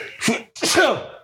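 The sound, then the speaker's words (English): A loud sneeze: a short sharp intake followed by an explosive burst that trails off over about a second, with no talking in between. “Bless you.”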